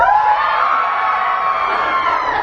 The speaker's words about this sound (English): What about screams? Let's get everyone screaming.